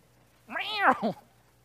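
A single drawn-out cat meow, rising and then falling in pitch with a short second syllable at the end, heard alone against a quiet background.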